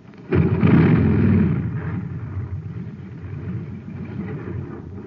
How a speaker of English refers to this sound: A jet cycle has just pulled into a filling station to get its tank filled. The man has it filled with ordinary fuel. Listen.